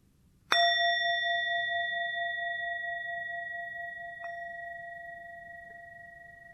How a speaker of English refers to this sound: I'm going to have a bell here. Now, there's different ways of holding the bell. And I can hold it this way. Or I can hold it this way.